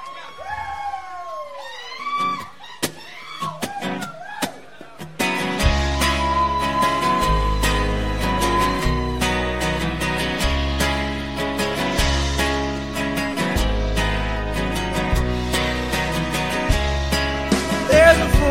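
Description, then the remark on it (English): A song's instrumental intro: a few seconds of swooping, wavering guitar notes, then a full band crashes in with heavy bass, steady pounding drums and loud sustained chords, without vocals. “And this is the next song. It's called ….”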